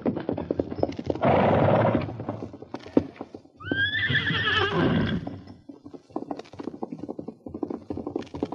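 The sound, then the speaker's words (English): A horse lets out a loud, shrill whinny in the middle of a steady, rapid drumming of galloping hooves that continues before and after the call, with a burst of rough noise early on. “Yeah, I can use that horse.”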